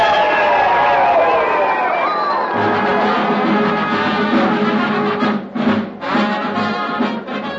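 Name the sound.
crowd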